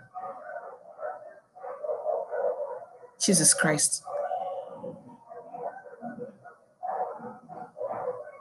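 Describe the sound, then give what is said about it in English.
A short, loud burst of dog barking cuts in partway through while people keep talking; the voices continue before and after it. “What is going on with these dogs?”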